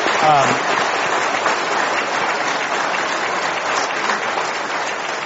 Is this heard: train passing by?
no